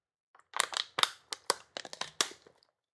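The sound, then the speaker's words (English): A plastic water bottle crinkles and crackles as someone takes a drink during a water break, in a quick series of sharp, irregular bursts, about eight or nine crunches over a couple of seconds, with no one talking. “Hold on. Water break.”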